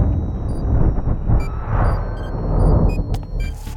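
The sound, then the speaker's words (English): A sci-fi time explosion effect: a sustained, heavy rumbling roar laced with high electronic whines and shimmering tones, swelling midway and ending in sharp crackling bursts, loud with no voices. “That didn't sound good. That's just the time explosion.”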